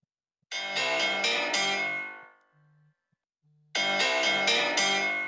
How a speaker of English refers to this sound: No, that is the most annoying ringtone in the history of ringtones. And it just goes off.